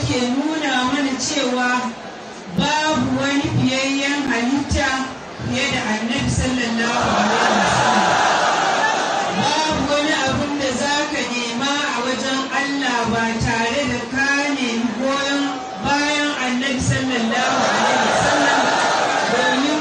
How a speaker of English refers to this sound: MashaAllah, this was the tremendous crowd. This was the tremendous crowd. And who are the followers of Tijani Silsila? Those followers, they are from Nigeria, exactly from Bauchi State, Bauchi City. This was on October of 2019, last year, this video.